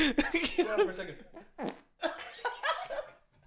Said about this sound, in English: Did you hear that fart? I farted into the microphone. I think it's on the mic.